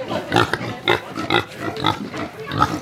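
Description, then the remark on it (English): Pigs grunt in a pig tent at a show, including a British saddleback, a black pig with a white stripe over its shoulders, in a steady series of short, rough snorts, roughly two every second, with no talking over them. “I've wandered into the pig tent and I've met with Claire”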